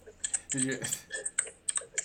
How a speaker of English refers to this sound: Here's my keyboard, Ryan. Yeah, it's keyboard.